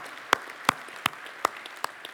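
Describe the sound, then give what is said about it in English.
Congregation applause: a steady beat of sharp claps, about five or six evenly spaced strikes in two seconds, over a soft continuous wash of scattered clapping, with no voices. “We can clap for that, can't we?”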